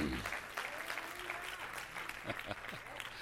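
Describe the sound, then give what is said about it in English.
An audience claps steadily during a pastor's sermon, a dense, continuous patter of many hands that holds at a moderate level for about three seconds, with faint crowd murmur underneath. “We want to hear what you have to say before we clap too loud.”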